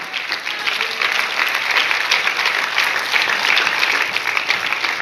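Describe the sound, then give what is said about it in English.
An audience claps together in sustained, dense applause of praise to Jesus, steady at a strong level for the whole stretch, with no voices standing out above it. “Give him a hand clap of praise.”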